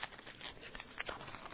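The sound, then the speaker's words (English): A cough drop wrapper crinkles softly in a quick run of irregular, papery crackles, fairly faint, with no voices. “Excuse me, I need another cough drop.”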